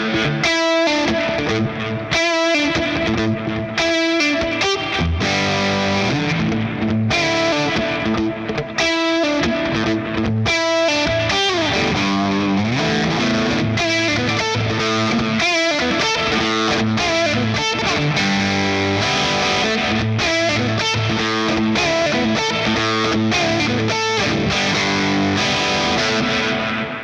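Crunchy, distorted SG electric guitar plays chords and riffs for nearly half a minute through a Solo Dallas Storm compressor pedal into a Marshall amp, its level held steady and even by compression, with thick low mids and no talking.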